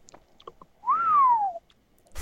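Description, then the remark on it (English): A person whistles one clear, sustained note that swoops up briefly and then glides steadily downward, heard alone, with a few faint clicks before it and a short rustle at the end. “If you want to do like a wolf whistle or whatever you call it, like that would...”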